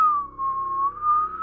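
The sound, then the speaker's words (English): A steady, high whistling tone like wind, holding one pitch that dips and rises gently for about a second and a half, with no talking. “The wind is beginning to.”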